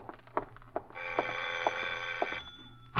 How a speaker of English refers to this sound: Then, just as you finish putting on your lipstick, the doorbell rings again.